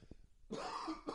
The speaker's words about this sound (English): Still coughing because of fucking trees.